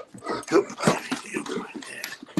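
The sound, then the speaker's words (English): A male dog whimpers for attention, a quick run of short, pleading whines and yips packed into a couple of seconds, fairly loud and insistent. “Oh, lovely dog. Yeah, he just wants a bit of attention.”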